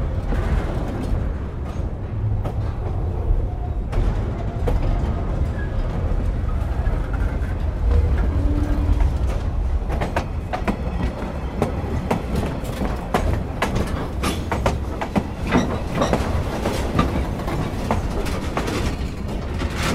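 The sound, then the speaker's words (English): A train rolls steadily along the rails with a heavy, continuous low rumble, overlaid by sharp clicks and clacks from the wheels that grow more frequent toward the end. No voices. “And, I mean, the good thing about it was I got to record some trains.”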